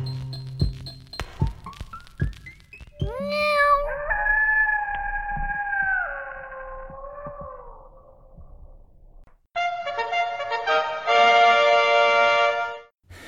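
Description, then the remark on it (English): A cat lets out a long, drawn-out meow that wavers in pitch, after a few clicks and a quick rising squeak, then a second loud, strained and buzzy yowl. No one speaks. “But that being said, that's a pretty good story of a cat being pretty goddamn adorable.”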